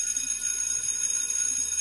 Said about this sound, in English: signifying the end of mid-morning break. As the last tone of the bell rang out and disappeared, the crafts and the beings, in the blink of an eye, all disappeared.